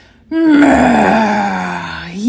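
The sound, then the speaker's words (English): A voice imitates a long, loud groaning yawn, starting abruptly and sliding slowly downward in pitch for about two seconds before trailing off, alone with no other sounds. “Yawn.”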